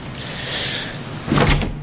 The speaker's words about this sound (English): Just walk through. Don't look back. Okay. Door.